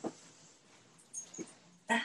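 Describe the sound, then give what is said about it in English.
A dog shifts around while its collar tags jingle in a few short, bright metallic bursts, the loudest clink near the end, with no one speaking. “Leo, I'm gonna have to kick you out. Can you lay down? Or Thank just you. like take his collar off.”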